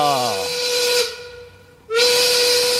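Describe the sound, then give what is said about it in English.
A loud steam whistle marking quitting time blows with a strong sustained tone and hissing, dips briefly to a quieter hiss, then blasts again at full strength, with no talking. “We don't control the whistle. No. When it goes off, you boys have to quit.”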